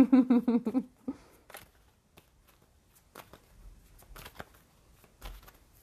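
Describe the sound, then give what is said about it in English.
A short voiced sound opens, then a Sun and Moon Tarot deck is shuffled for a reading: soft papery riffles and flicks in scattered bursts, with quiet pauses between them. “Okay, so we have, fortunately, just one card that gently came out from the Sun and Moon Tarot”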